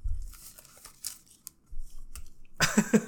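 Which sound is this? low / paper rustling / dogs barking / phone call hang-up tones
paper rustling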